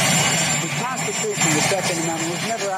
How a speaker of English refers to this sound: I do apologize for the ridiculous jet engine of Marine One behind him